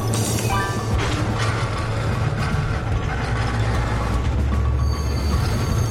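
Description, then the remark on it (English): A train that is not slowing down rumbles steadily along the tracks, loud, with a deep continuous drone and thin metallic squeals riding on top. No one speaks. “it's back on balance with the tracks, but it's not slowing down.”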